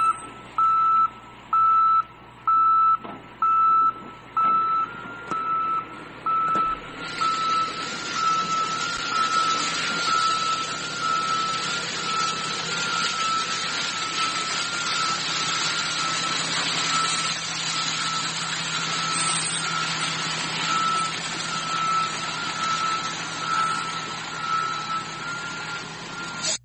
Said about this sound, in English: Lot of trash cans. All the trucks backing up to the trash heap.